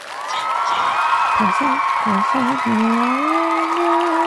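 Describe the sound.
A steady burst of crowd applause and cheering fills the whole moment, loud and continuous, with voices whooping and calling out over the clapping.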